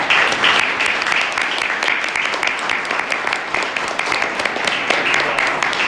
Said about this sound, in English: So just if we could get a big round of applause for our current board, and we'll take that.